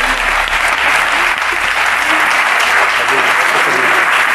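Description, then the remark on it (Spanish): A crowd applauds steadily and loudly, a dense wash of clapping hands filling the whole moment without pause, with faint voices mixed underneath. “Vamos a aplaudirte.”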